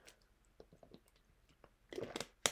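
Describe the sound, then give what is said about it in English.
Someone sips water: soft wet mouth clicks, a brief cluster of slurping swallows near the end, and a sharp clack like a glass being set down. No talking. “Sorry, I'm just going to take a little sip of water here.”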